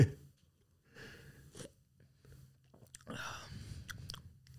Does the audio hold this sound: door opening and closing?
no